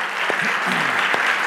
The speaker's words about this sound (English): Let's give the Lord a clap offering once more.